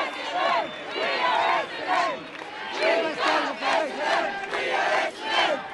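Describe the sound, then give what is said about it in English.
The Essendon football cheer squad cheers and chants together after a goal in loud, rhythmic bursts, rising and falling every second or so, with excited shouting throughout. “Like the players on the field, the cheer squad have set plays, certain things that they do at particular moments.”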